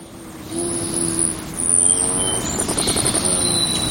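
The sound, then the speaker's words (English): A hummingbird's wings hum in a low, steady buzz that swells as it zips by, with thin, high chirps and squeaks over it and no talking. “The hummingbird we hear zipping by is likely seeking out red blossoms or making a beeline for a backyard nectar feeder accented with red plastic.”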